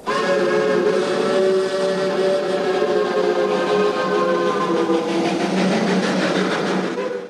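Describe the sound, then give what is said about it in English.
A train enters a tunnel: a loud, continuous rumble with sustained, slightly falling whistle-like tones droning over it for several seconds, no voices. “After what seemed an eternity of silence between us, the train entered a tunnel.”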